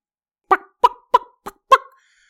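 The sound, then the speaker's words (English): A person imitates a chicken with five short, clucking bursts in a slightly uneven rhythm, fairly loud, the last one trailing off into a brief squeak. “I've just realized how good I am doing chicken noises.”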